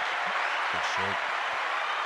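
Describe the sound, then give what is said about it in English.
A steady wash of applause, many hands clapping in a dense, hissy blur that holds evenly throughout, with brief voice sounds rising over it partway through. “Then we got claps in there, right? Yeah, we got claps.”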